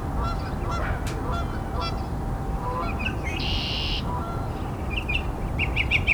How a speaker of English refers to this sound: Probably hear Canada Goose too.